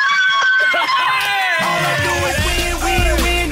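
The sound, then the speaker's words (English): A woman on a phone line, who has just won $10,000 in a quiz, screams excitedly in loud, sustained shrieks that rise and fall in pitch, with other voices clamoring beneath her throughout the short burst. “Oh, she's screaming.”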